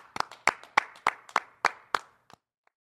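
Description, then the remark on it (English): A steady run of about seven sharp hand claps at an even, brisk pace, followed by a couple of softer trailing claps as the clapping fades out. No voices. “Clap it up.”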